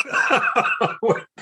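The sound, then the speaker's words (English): A stifled cough held back in the throat, breaking out as four or five short muffled bursts in quick succession, almost like a snicker, with no talking. “Like, you know, one of those mid coughs. Like, when you feel like you're trying to hold it in.”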